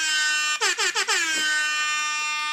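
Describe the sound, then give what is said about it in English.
A loud, brassy air horn sound effect from a phone app blares continuously, punctuated by four quick stuttering blasts near the start, then holds a steady harsh tone to the end with no voices. “I found the Air Horn app.”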